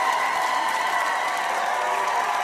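A crowd roars steadily, with sustained screams and a thin whistle riding over a dense wash of applause and cheering that stays loud throughout.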